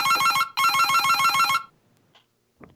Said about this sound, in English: So have we got some sort of, do you have a phone ringing for us,